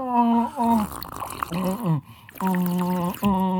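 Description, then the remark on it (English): Loud slurping sips of water from mugs, several drawn-out, whistly pulls, with a brief pause between bursts, two people sipping in unison. “We get our sip, the unison sips, dude.”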